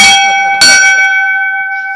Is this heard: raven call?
no